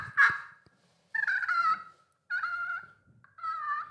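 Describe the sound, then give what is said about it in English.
An imitated turkey call: four nasal, raspy yelps in separate bursts. The first is short and sharp, and the next three are longer and wavering, with short pauses between them and no talking. “Come here, turkey, turkey, turkey.”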